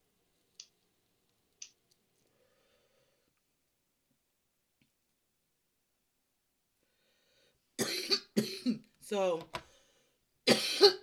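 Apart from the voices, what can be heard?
coughing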